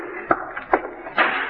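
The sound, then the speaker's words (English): A door slams shut: a quick series of sharp wooden thuds and knocks, with the last impact giving way to a brief rattling rumble. Moderately loud, with no voices. “It seems to me I've heard that door slammed by quite a few indignant young men lately.”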